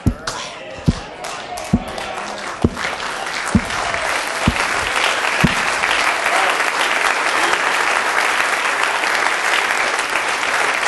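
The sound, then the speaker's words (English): A group claps hands in a slow, steady unison beat at first, then the clapping swells into dense, continuous applause that carries on loudly to the end. “Okay, so you don't want to clap your hands?”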